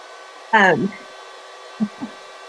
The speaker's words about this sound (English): Just the fan on my computer just got noisy just this minute.